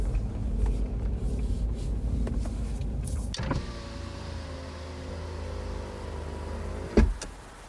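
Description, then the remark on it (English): An electric car window hums as a driver who has stopped the car lowers it, a steady motor whine with the car idling underneath, ending in a soft thunk as the window stops. “She stops the car and rolls down the window for a better look.”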